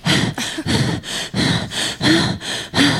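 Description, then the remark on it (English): Loud, heavy breathing, about eight rapid in-and-out breaths in a steady rhythm, raspy and panting, with a faint low voiced tone on a couple of breaths. “They just looked at each other like, who the hell's breathing so hard?”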